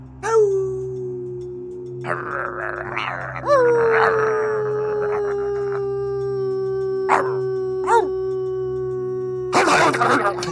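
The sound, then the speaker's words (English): A voice imitates a wolf into a microphone, sliding up into long drawn-out howls, broken by short harsh snapping bursts like gnashing teeth, loud with a noisy flurry near the end. “You hear the sounds of gnashing of teeth and wolf sounds.”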